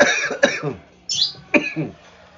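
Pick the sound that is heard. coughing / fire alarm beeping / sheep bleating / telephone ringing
coughing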